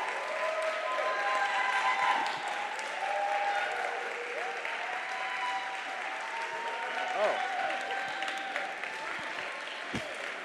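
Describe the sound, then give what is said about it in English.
A church audience applauds the class of 2017 graduates steadily for about ten seconds, a dense wash of clapping from many hands, with scattered cheers and murmuring voices mixed in. “Yeah, you can clap.”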